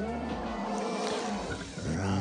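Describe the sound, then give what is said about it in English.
Three voices let out a loud, sustained growling roar together, imitating a bear, with layered harmonic tones rumbling for a couple of seconds. “Hey, we did, all three of us did a roar.”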